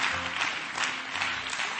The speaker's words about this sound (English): Come on, clap your hands to the Lord and thank Him for His word tonight.